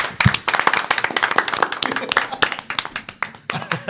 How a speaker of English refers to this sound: Clapping for himself. I deserve it. I deserve it.